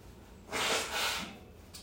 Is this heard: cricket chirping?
no